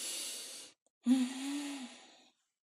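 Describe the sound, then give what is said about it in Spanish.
A voice imitates waking up from sleep: a long, airy inhale, a brief pause, then a deep, voiced sigh-like exhale with a low hum, fairly loud, with no words spoken. “Empieza a través de la respiración. Tú no te das cuenta cuando te levantas que tú estás dormido y haces así.”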